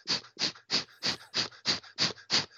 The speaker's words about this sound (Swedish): Men eldandning, det är att man andas med diafragman. Man drar in magen på utandning. Så gör man det 30 gånger.